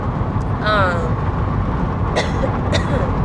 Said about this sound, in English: It's getting loud out here in these streets, so let me speak up.